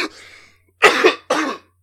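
cough

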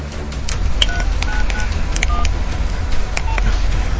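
telephone dialing tones

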